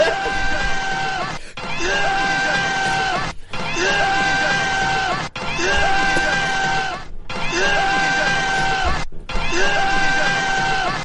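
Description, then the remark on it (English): Several people yell together in loud, strained, drawn-out bellows, imitating Stallone yells, repeated about six times in quick succession with brief gaps between each shout. “All right, I'm going to also give this five Stallone yells with a sixth Stallone yell for the co-ed shower scene.”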